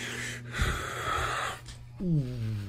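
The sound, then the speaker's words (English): Loud breathing with a rough, wheezy edge, broad airy bursts that rise and fall, ending in a voiced snort-like sound with rising pitch. “Why are you breathing that heavy?”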